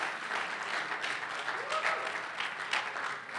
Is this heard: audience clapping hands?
yes